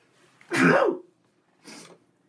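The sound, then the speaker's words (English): A single loud sneeze bursts out sharply, followed a moment later by a softer, breathy sniff or exhale. No talking. “it is a sneeze.”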